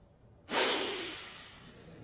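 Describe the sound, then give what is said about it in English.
A single sharp, scornful, incredulous sniff by a man, loud, cutting in abruptly and then trailing off in a breathy hiss. No one speaks. “…'s incredulous sniff was a triumph of forensic art.”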